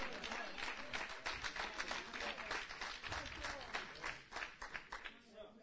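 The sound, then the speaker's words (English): An audience applauds steadily for several seconds, a dense, even patter of many hands clapping at once, with a faint murmur of voices mixed in. “Some of you didn't clap.”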